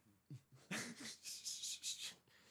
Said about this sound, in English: Oh, another burp.